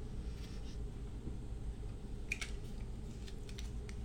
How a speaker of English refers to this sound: And what I'm going to do is I'm just going to tape the boat. I believe I have some scotch tape.